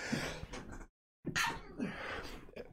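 A sharp sneeze bursts out after a brief silence, preceded by a breathy inhale and followed by a loud, noisy exhale, with no talking.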